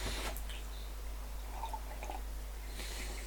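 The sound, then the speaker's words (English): Soft, wet mouth sounds of someone sipping a drink: a faint slurp and a small swallow, with light clicks and squishes spread over a few seconds and no talking. “Probably a bad time to take a sip.”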